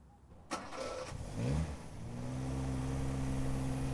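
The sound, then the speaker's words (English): A sharp click, then a car engine cranks and catches, settling into a steady, mid-pitched hum that holds strong to the end as the car backs out of a driveway. No voices. “From her porch, Jenny watches over her as she backs out of the driveway.”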